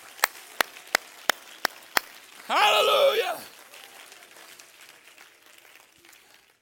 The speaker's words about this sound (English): Everybody clap your hand to the Lord today.